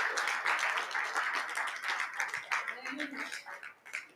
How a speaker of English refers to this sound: Let's clap it up for those that made that prayer now.